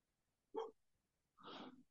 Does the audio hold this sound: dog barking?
yes